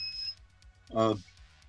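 A high, thin electronic alarm beep sounds briefly at the start, followed by a louder, buzzier tone about a second later, over a low steady hum.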